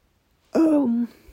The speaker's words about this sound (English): I'm yawning.